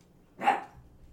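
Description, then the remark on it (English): A puppy lets out one short, sharp bark, moderately loud, with only a low background hum before and after. “Puppy! Not all the other puppies.”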